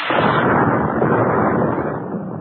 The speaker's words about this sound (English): After the explosion, the darkness descended again, and there was silence.